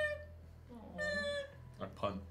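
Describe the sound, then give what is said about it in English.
A person makes a thin, high-pitched imitation of their small cat's meow, a few short mewing cries, with a brief breathy sound near the end. “This is my impression of my cats.”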